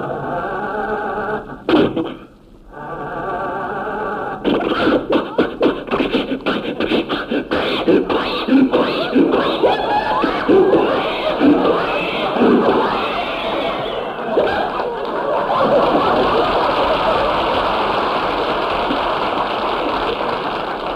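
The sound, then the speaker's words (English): An old car engine sputters and fails to start, with a loud, ragged run of irregular coughs and clattering bursts that settles into a rough, steady hiss and rumble. “Rochester, what's wrong with the motor?”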